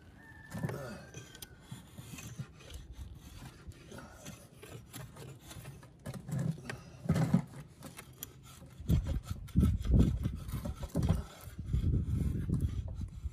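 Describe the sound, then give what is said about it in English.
A wooden hoe handle being shaped by hand: repeated rough rasping and scraping strokes, fairly loud, growing busier and more forceful toward the end, with no talking. “Let me get back to making some hoe handles.”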